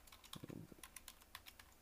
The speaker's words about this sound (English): Let's see. I'm just typing here.